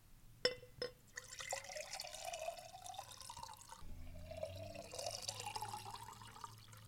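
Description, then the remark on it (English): Spring water pours steadily into a glass, starting with a couple of sharp clinks, then a continuous bubbling trickle whose pitch rises as the glass fills. “Can you pour a little water for us?”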